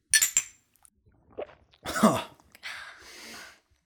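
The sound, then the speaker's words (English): Shot glasses of Sky vodka clink together sharply in a toast at the start, a quick bright chime, followed by breathy gasps and a strained groan as people react after drinking the shots. “Well, I think it's time to take our first shot of the day.”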